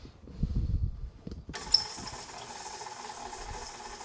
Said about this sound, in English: Now that the sugar and the butter are in there, We're gonna cream them. That means blend them until it's all one thing. Here comes my squeaky mixer.